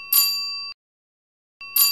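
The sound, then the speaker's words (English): A bell rings out twice, a bright metallic ding with a lingering tone, then a pause of about a second before the second strike. No voices or other sounds. “But for those of you who don't know, that is called a bell.”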